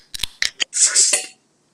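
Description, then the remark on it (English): A mouth imitation of a soda can opening: four quick, sharp clicks followed by a bright, breathy hiss of about half a second, with no other sound around it. “I'm going to have to just make the noise with my mouth.”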